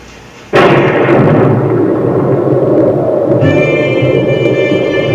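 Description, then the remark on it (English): A sudden loud thunderclap bursts out after a brief hush, then settles into a sustained, heavy rumble mixed with roaring wind that keeps going to the end, with a faint high tonal whine emerging later. “It's only the wind and the thunder.”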